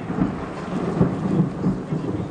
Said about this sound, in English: Soon the sky opens and the rain is fierce, and I half wonder if God's chosen this night to drown out the wickedness of the village.